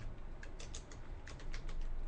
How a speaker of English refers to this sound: Let me type in Earth Chronicles on a search engine.